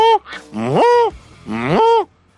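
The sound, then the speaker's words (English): A voice imitates duck and goose (honker) calls over the phone from the Foul Feathers hunt club: a brief call followed by two long, rising nasal honks with strong harmonics, loud and separated by short pauses. “I could hear the duck and the honkers.”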